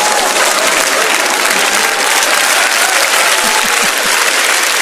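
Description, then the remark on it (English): A crowd claps loudly and steadily for a guest, a dense wash of many hands applauding at once, sustained without a break. “And a big round of applause for our friend and very special guest tonight”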